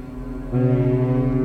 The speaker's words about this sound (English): In one dream, I miss the dock time in Japan and anxiously race to the gangway as the ship blew its sirens and began moving.